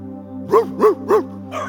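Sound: dog barking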